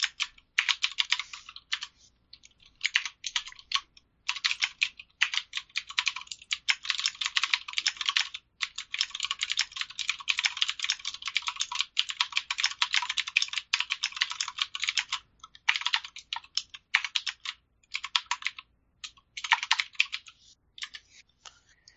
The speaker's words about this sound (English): have you happened to get a new keyboard recently? It wasn't recently, but I did get a new keyboard a while ago. But But yes, I think you heard that it's a mechanical keyboard. Yes. Cherry blue, maybe?